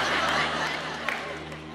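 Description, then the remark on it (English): A live audience reacts with a dense wash of laughter and chatter, and a few sharp claps from one woman in the audience pop out above the crowd noise. “that was her down there clapping.”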